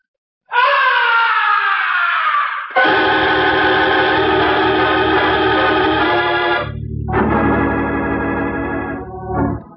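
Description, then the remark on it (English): A loud, piercing, blood-curdling scream from high up in the heights of the stage of an opera house, sustained for several seconds, its pitch wavering and sliding, with a low rumble beneath and a ringing, echoing quality, with no talking. “From way up in the heights of the stage, the opera house was pierced with a blood-curdling scream.”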